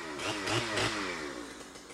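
A chainsaw cutting trees at a fire camp runs loudly and steadily, its buzzing engine pitch rising and dipping as it works through a cut, with no voices over it.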